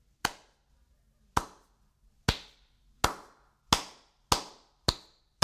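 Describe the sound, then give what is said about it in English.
A single person claps slowly, eight sharp, crisp claps that start with long gaps and gradually speed up. No one speaks. “Now, at this point, it would have been so cool if one of the Pharisees in the back would have slowly risen and just started clapping.”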